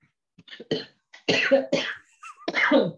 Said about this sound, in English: As I have a coughing fit. I've had that happen while recording before. It's the worst.